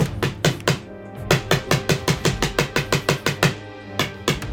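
Rapid, insistent banging on a door, a long run of sharp thuds in steady rhythm with a brief pause before the pounding resumes, loud and hard throughout.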